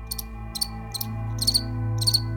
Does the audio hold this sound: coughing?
no